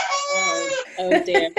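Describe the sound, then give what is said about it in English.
A rooster crows once, a long, loud, strained cock-a-doodle-doo, followed by a few sharp clucking squawks at the end. “Sorry, that's the cock one.”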